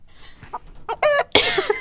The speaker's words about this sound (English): Chicken SFX.